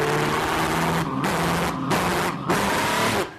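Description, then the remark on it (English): The loud, roaring engine of the Back to the Future car revs in several surging bursts, broken by brief dips, with a hissing rush layered over a steady motor drone, no voices present. “And if you want to race against time, you get in the Back to the Future car, and you actually go back in time.”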